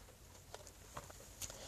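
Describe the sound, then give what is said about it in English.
Soft rain patters steadily outside, faint, with scattered light taps over a low hiss and no voices. “Not necessarily right now. I'm listening to the rain, but a lot of people don't want to be in a gym.”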